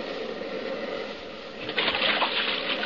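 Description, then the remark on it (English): Steady rushing water as a boat pushes through shallows toward an island beach, swelling into a louder surge of splashing and churning near the end as it drives onto the beach. Continuous, no voices. “Hold on, we're going to hit the beach.”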